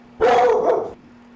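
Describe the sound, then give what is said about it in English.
A single loud dog bark or drawn-out yelp lasting under a second, standing alone against a quiet background hum. “And that's the joy of having dogs, which we all have.”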